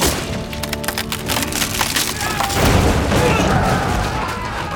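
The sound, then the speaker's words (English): A heavy wooden bunk bed, its two front legs slashed, splinters and collapses with a loud crash, cracking timber giving way to a rumbling thud of falling wood that fills the whole moment. “he saw three soldiers in front of a heavy bunk bed. Zorro slashed the two front legs, sending it crashing down on top of them.”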